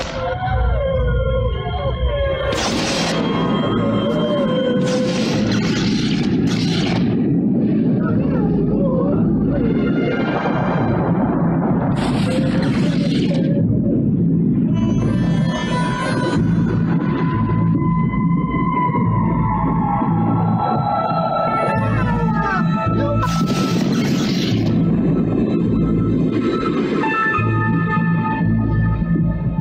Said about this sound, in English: We'll have a storm now, and an earthquake if you like. You must stand aside, out of danger.